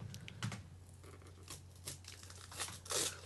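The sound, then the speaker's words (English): Holiday-themed gift wrapping paper with a Christmas tree design is slowly torn and crinkled open from a red box, with a series of soft rips and rustles building to a louder tear near the end, no voices, over a low steady hum. “is opening a red box. To the people at home, it is a red box. She's doing it very slowly. The paper is holiday themed.”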